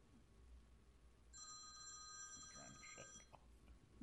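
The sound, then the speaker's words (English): A phone rings with a bright electronic tone for about two seconds, moderately loud against a quiet background with low murmur, then cuts off. “Putting in the agenda, you remind me to tell people to silence their phones before we begin.”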